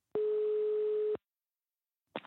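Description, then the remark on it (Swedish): A steady, single-pitched telephone ringback tone sounds for about a second while calling the speaker's mother, followed by a pause before the next ring begins at the very end. No voices are heard. “Ska se om jag kan få tag på mamma på telefon.”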